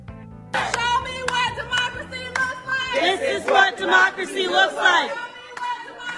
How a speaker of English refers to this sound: This is what democracy looks like. Three communists and a bunch of sloths standing around cheering.